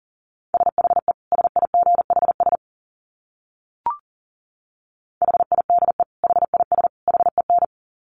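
Rapid Morse code at 40 words per minute: a steady mid-pitched tone keyed in quick dits and dahs, two bursts of characters separated by a pause with a brief blip in the middle.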